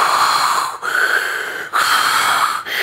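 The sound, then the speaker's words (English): A man's voice imitates the wheezy, raspy breathing of his 13-month-old son, three drawn-out hoarse breaths in a steady rhythm with brief pauses between, fairly loud. “Look, seven kids in my house, youngest is 13 months old. He's amazing, but he breathes like this.”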